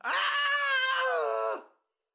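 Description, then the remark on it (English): A boy lets out one long, loud, high-pitched scream lasting about a second and a half, holding steady before sagging slightly in pitch and breaking off into silence, as he throws himself into the Prague clock and it crushes his body. “The clock ate up his body, and he screamed.”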